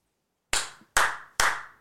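Three sharp, loud hand claps in an even rhythm, each with a quick bright snap and a short decaying tail, after a moment of silence. No one speaks.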